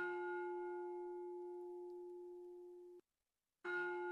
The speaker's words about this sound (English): All right, you heard it. That's not one, but two bells.